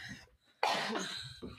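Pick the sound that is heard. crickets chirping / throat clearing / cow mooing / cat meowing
throat clearing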